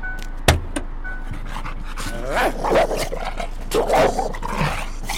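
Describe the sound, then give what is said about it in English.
A service dog kept in the trunk of a car lets out a sharp bark, then a string of rising and falling whimpers and whines, over a low steady rumble. “I have my service dog in the trunk.”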